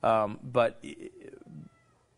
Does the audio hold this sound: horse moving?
no